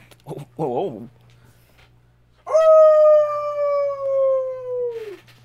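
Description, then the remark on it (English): A played Rampage howl: a couple of brief wavering yelps, then after a short pause a single loud, sustained howl that holds steady for nearly three seconds before sliding down and cutting off. “That wasn't Dead Air Wolf, that was Rampage. Yeah, Rampage Howl.”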